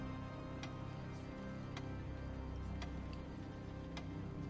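household object, clock ticking

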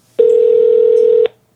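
signal or alarm, telephone dialing tones

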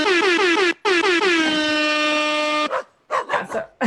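sound effect, air horn sound effect

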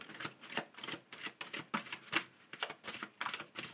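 household object, tarot cards being shuffled

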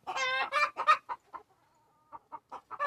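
bird, chickens clucking

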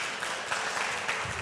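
crowd, audience round of applause

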